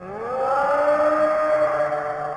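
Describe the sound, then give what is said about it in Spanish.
A loud foghorn on a tower blares in one long, sustained blast, its tone sliding up slightly at the start and then holding steady, with no voices around it. “La sirena llamó.”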